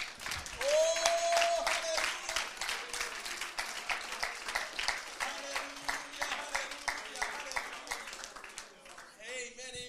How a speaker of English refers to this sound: Let's just give the Lord a hand clap of thanksgiving.